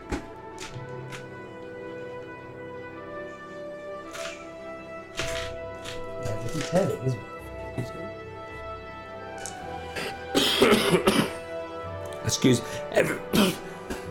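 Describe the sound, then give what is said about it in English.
Someone who is ill clears their throat and coughs in several rough bursts, the loudest cluster near the end, over a steady tonal hum in the background. “I do apologize if you hear coughing.”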